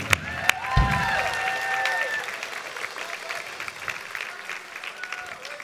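A church audience applauds steadily to welcome a speaker, a dense patter of clapping with a few whoops and cheers rising over it at the start, then settling into continuous moderate applause.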